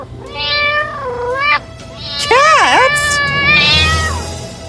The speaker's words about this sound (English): Just then, there were loud cat noises.